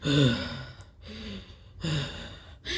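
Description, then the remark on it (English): A voice imitates heavy, creepy breathing: three slow, drawn-out rasping breaths, fairly loud, with short pauses between them and no other talking. “he keeps walking toward Danny, just breathing, because he has this breathing, this thing where he just”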